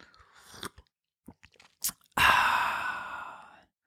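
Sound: sipping coffee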